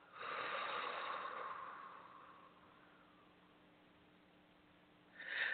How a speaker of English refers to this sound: Let's do it together one more time before you go into your own personal rhythms. Let's inhale. Now exhale.